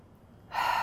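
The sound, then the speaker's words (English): A single audible breath drawn in sharply through the mouth, starting after a brief pause and swelling into a steady, airy inhale, with no talking. “And one more time, I want you to breathe in.”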